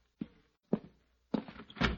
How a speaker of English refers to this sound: Oh, somebody at the door.